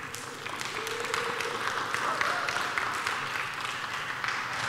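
A crowd applauds steadily for a reverend who has been called up to help, a dense wash of many hands clapping at once that holds at an even, fairly loud level for several seconds with no talking over it.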